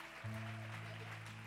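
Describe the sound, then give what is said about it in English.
A church audience at a morning worship service claps in a steady, dense wash of applause, while a low sustained organ-like chord swells in underneath and holds to the end. “don't you put your hands together”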